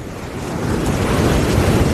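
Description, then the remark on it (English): Steady roar of waves breaking on a beach, a broad continuous wash of surf that swells slightly, with some wind buffeting the microphone and no voices. “We've safely made it down to the beach,”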